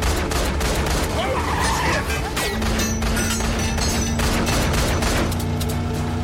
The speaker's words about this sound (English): So they escape. We're in a car chase. She's shooting bullets.